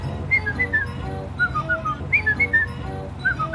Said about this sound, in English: Do you remember our whistle?